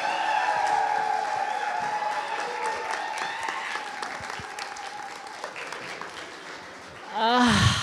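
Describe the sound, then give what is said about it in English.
Steady applause from a large audience at a live show as the performer walks onto the stage, a dense wash of many hands clapping at a loud, even level, followed at the end by a brief swelling cheer or whoop. “We'll do from the clapping again, because I like that.”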